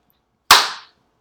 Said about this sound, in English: He just he slapped Chris Rock.